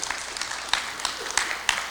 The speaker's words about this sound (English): And you can give her applause.